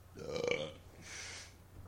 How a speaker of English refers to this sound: You're going to edit that one out, yeah, too. Absolutely. My mom's not going to hear that burp.